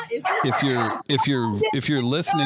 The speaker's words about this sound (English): If you're listening at home, when the dog started barking, get Dexter.